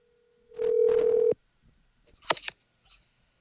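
A steady electronic phone tone hums for about a second before cutting off abruptly with a click, followed by a few faint handling clicks and rustles in otherwise quiet surroundings, as an outgoing call placed through Siri rings.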